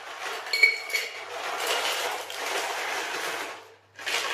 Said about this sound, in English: So that's nearly all the ice in the cocktail shaker.